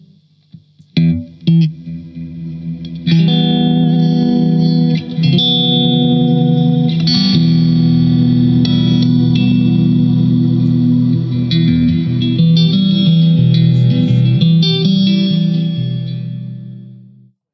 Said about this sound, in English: So that's the plate reverb turned off and the delay turned off, so you've just got an octave reverb and a particle reverb on at the moment.